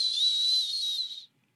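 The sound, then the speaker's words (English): A steady, airy hiss of breath pushed out through the teeth as a final exhale in a relaxation breathing exercise, letting all the air out, with a faint whistling edge, holding even for over a second before cutting off into silence. “Let all the air out. Maybe a little hiss.”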